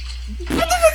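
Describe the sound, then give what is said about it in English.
An apple drops into a bucket of water with a single sharp splash, followed by a brief burst of sloshing, fairly loud. “This nigga dropped an apple in a bucket of water.”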